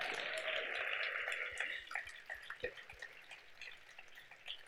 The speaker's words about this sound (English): Just acknowledge them. This is a huge deal. Like, they care about you guys enough to come talk about what Jesus has done in their life. So maybe we can like give them a tiny little round of applause.